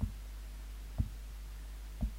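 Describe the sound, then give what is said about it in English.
A slow heartbeat: three low, muffled thumps about a second apart, each a soft double pulse, over a steady low hum with no voices. “You're just getting his heartbeat.”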